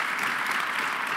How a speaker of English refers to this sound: All right, well, I'd love to get a round of applause for this set of public sector innovators. Thank you all.